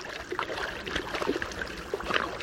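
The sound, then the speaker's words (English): Three moose, a large female and her two young calves, splashing through the water of a Wasatch Mountain lake in Utah on a cool July morning, a steady run of irregular sloshes and slaps, moderately loud, with no voices. “On a cool July morning, three moose frolic in the waters of a Wasatch Mountain lake in Utah.”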